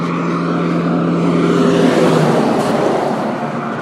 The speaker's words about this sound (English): Whew, that was a big truck.